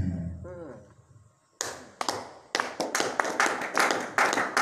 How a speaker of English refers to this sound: Those who are clapping and say God bless in your life.